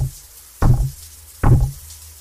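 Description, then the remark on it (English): Two heavy, booming knocks pound out about a second apart, each a loud low thud with a brief rumbling decay, over a faint steady background hum. “I stepped into the cloud, so dense I could hardly see anything in the bathroom, when I heard a loud pounding.”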